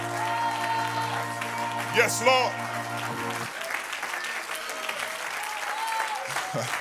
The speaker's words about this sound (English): Clap your hands unto the Lord and magnify him in this house.